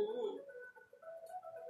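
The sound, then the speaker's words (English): A bird coos and calls in soft, warbling tones, starting with a fuller low coo and trailing into thinner, higher sustained notes, fairly quiet and with no one talking. “They're like a mix of seagull and a cuckoo bird.”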